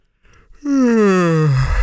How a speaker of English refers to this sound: He yawned again.